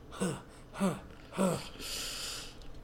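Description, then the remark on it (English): A voice imitates the heavy breathing of the character Jolene: three short, voiced, gasping inhales in a steady rhythm, then a long breathy exhale. Moderately loud, with no talking. “She's just, like, breathing heavily.”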